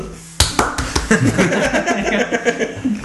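A small group claps for about three seconds, with sharp, uneven slaps that start abruptly and overlap loosely. Faint voices and a chuckle sound in the background.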